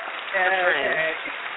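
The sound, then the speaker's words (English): A short burst of applause from an audience of girls welcoming a guest coach to a show, a steady wash of clapping with high-pitched cheering voices rising over it, swelling for about a second before easing off. “Hear your applause, girls, in the audience.”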